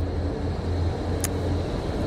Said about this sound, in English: There comes a huge, oh my gosh, it's a tractor. Goodness gracious, that's hilarious.